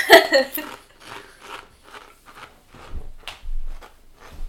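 Crunchy chewing of spicy Doritos chips, with a loud first bite followed by a steady series of softer crisp crunches spaced about half a second apart.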